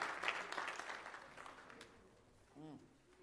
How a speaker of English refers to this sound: Give them a hand clap. Great job.